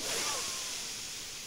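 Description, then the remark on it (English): A slow, deep inhale for a count of four seconds as part of a 4-4-6 breathing pattern, drawn in as a steady, airy hiss that fades slightly toward the end, with no talking. “Inhale for 4 seconds.”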